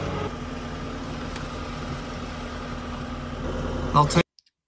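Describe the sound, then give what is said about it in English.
A car engine hums steadily, its low rumble building louder near the end as the vehicle, driven by a woman, pulls away, then the sound cuts off abruptly. “So she just pulled off after that.”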